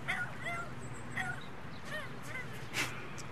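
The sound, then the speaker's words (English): A dog named Walter, kept as an outside dog, barks repeatedly in short, high yapping bursts, about five or six over a few seconds, against a steady low background rumble. “Walter's an outside dog.”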